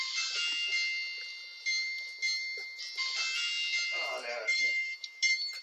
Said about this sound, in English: Oh, no, that was just an alarm.